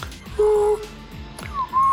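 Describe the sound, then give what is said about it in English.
Someone vocally imitates a robotic droid chirp: two short, whistle-like tonal bursts, the first steady and the second sliding upward, fairly loud with brief pauses between. “It sounds like a droid. That's pretty cool. It's like a vibration and a chirp.”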